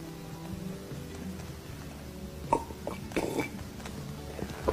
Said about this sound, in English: Oh, that's a fine big gulp.